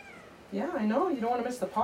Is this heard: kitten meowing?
yes